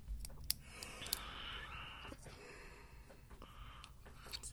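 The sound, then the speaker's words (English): A long, drawn-out yawn, breathy and fairly quiet, stretching over several seconds, with a few small mouth clicks scattered through it and no talking. “Sorry, I had a big yawn there.”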